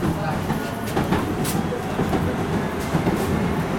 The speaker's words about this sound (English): They huddled together on the train as it sped to Hong Kong.